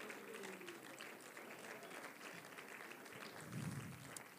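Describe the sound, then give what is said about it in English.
A church audience claps steadily in praise to the Lord, a dense wash of many hands with scattered voices and cheers mixed in, sustained throughout at moderate level. “And would you clap your hands and lift your hands and give praise to the Lord today?”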